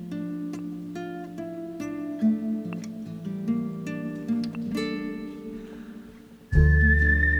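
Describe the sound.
A mellow instrumental track plays steadily, then a clear, pure whistled note from a professional whistler rises above the music near the end, carrying the melody without any singing.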